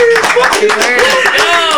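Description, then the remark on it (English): A small group claps their hands in quick, uneven bursts that run steadily throughout, while voices whoop and cheer loudly over the applause. “Clap it up for us.”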